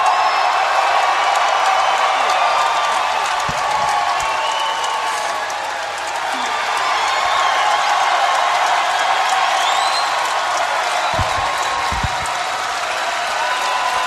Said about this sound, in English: Thank y'all. One more match from one of the better crowds that I've been in front of in the last 5 years.